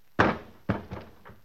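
A heavy thud as a man's body collapses onto the floor, followed by a second impact and a couple of softer settling bumps, fairly loud with no voices.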